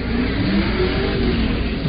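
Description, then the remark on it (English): An Equinox car engine revs loudly and steadily for a couple of seconds, a dense, throaty roar with a slightly rising whine, with no voices. “It was a car being revved up.”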